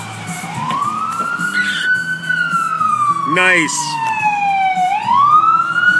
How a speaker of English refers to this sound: There's an ambulance. Let's listen.